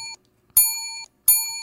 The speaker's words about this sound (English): We're going to try this. First time we tried it, I don't know if we can do this, but we're going to try. What are we trying? First five-ding bell.